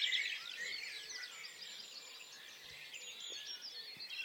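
A dense chorus of many birds singing at once, overlapping high chirps and trills filling the air continuously, some bright, with no voices.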